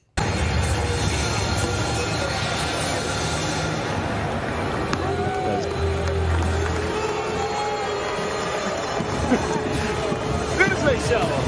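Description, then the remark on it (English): A large crowd of Mets fans at a New York Mets stadium boos Max as he is shown on the big screen waving, a dense, sustained roar of low voices with scattered shouts rising above it and no pause throughout. “You get the big boo, and all he could do was laugh.”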